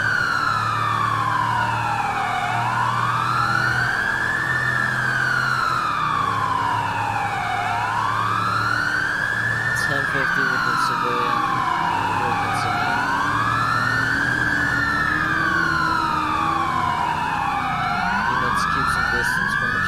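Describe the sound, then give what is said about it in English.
A loud police car siren wails in steady rising and falling sweeps, with a second overlapping wail layered in and a low engine rumble underneath, continuous throughout. The police car is joining a pursuit code 3, heading northbound on Great Ocean Highway. “I've spotted the pursuit. I'm joining code 3.”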